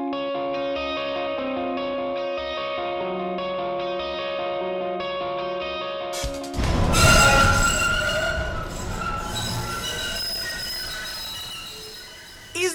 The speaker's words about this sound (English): All it is just train noise over that track. That's all it is.